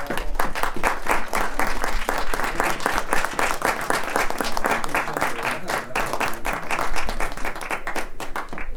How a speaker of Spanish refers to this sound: Pues un aplauso, porque ya nos vamos. Ya nos vamos.